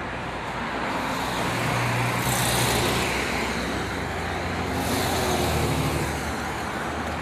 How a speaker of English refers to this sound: Ain't this much damn traffic early in the morning in LA on and Tuesday.